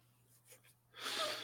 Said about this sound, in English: Batman is a heavy breather then. He is kind of. Ben Affleck.